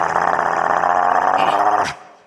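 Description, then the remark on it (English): Coyotes growl in one loud, sustained, raspy snarl lasting about two seconds before it cuts off abruptly, with no voices. “And of course they are not normal dogs. They are coyote.”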